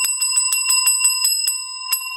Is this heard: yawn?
no